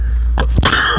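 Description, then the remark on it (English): A single sharp sneeze bursts out, a quick breathy intake followed by an explosive, noisy expulsion, with a low steady hum in the background and no talking. “Bless you.”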